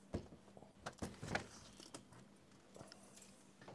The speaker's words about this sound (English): Oh, I can hear the clinking keys. Yeah, there you go.